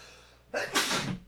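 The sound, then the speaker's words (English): A single sudden sneeze, loud, starting with a sharp intake and bursting into a broad, hissing explosion that trails off after about half a second. “Bless you. That was the heresy coming out.”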